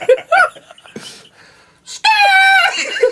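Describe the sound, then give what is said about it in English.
A voice imitates a hawk's screech with one loud, shrill, sustained cry that slowly falls in pitch, following some short bursts of chatter and a brief pause. “Right, how Hawk sound? It's more like a screech.”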